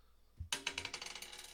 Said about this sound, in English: Roll me a d10.